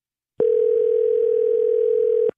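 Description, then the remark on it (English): A steady, unbroken telephone dial tone hums at a single mid pitch for about two seconds, loud and alone, starting and stopping abruptly as a phone call disconnects and the line goes dead. “I think we got disconnected.”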